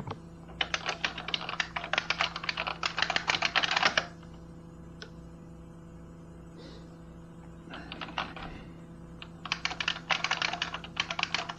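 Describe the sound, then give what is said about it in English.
Rapid computer keyboard typing in bursts as someone types a paper: a flurry of clicking keys for about four seconds, a pause with a few stray taps, then two more quick bursts of typing. “You know, just typing your paper for you.”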